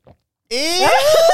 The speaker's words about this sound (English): Ew. If you're listening and not watching, I put my throat on the mic just so you can hear my gurgle. That's disgusting.